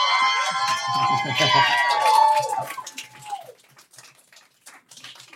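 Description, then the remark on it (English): An audience cheers and whoops loudly with scattered clapping, voices rising and falling in pitch, then the noise tapers off to quieter, sparse claps after about three seconds. “Keep giving me a round of applause”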